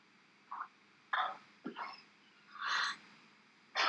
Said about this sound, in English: Coughing fit, and I wanted to make sure she was alright.